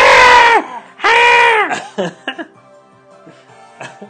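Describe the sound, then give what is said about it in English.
Goats from the film Thor: Love and Thunder scream twice, each a loud, drawn-out, harmonic cry that sags in pitch, followed by a few shorter, quieter bleats and scuffling noises. No one speaks. “I brought a sound clip of those goats screaming.”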